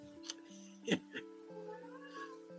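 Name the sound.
cat meowing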